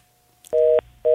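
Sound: telephone dialing tones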